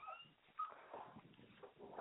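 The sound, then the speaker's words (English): A puppy whimpers softly, a run of short, thin whines rising and falling over a couple of seconds with no one talking. “Good puppy.”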